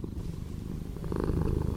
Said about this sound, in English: oh my God, I loved that cat purring.